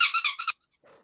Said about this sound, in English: Come on, you're the squeaky toy. Come on, you can do it. Jump on the microphone. Faster, kill, kill.